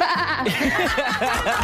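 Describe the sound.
A caller on the phone-in shortest quiz imitates a sheep's bleat, a wavering, quavering "baa" held for over a second with a rapid vibrato, fairly loud, with no other talk.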